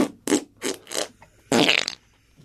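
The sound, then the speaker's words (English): A grown man makes a quick series of four short, squelchy armpit farts in a steady rhythm, then a longer, louder sputtering one after a brief pause, clear with no talking. “It's a grown man doing armpit farts.”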